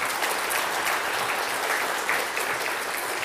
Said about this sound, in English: Can we hear a round of applause?